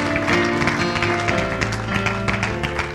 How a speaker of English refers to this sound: And everyone said, in Jesus' name, give the Lord a hand clap of praise before you're seated. Hallelujah.